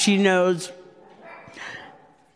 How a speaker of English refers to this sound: sorry, that's my puppy.